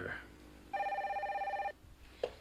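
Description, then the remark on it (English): A single burst of electronic telephone ringing lasts about a second, a bright trilling warble at steady pitch, clear, with faint voice sounds just before and after. “Hold on. The phone's ringing.”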